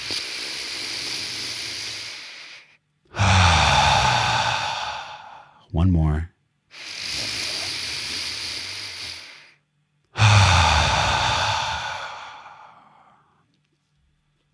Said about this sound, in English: let's let that integrate into yourselves in two deep breaths. close your eyes, fill your nose with rich air and a belly behind your balloon, and a balloon behind your belly.